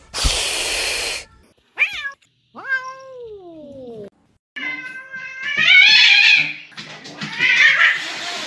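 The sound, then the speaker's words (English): A pet cat with diabetes lets out a breathy hiss, then a run of four loud meows, some short and others long and drawn-out, rising and wavering in pitch. No one speaks. “I have to check my cat if it's okay.”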